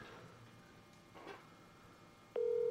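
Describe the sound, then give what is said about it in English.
After a couple of seconds of quiet room noise with a few faint clicks, an outgoing call's ringing tone starts abruptly: a steady, loud electronic tone that holds until the end. “So he normally never answers his phone.”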